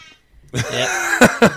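A loud, buzzy air horn blast with a steady harmonic tone holds for about a second, broken near the end by two short, harsh bursts.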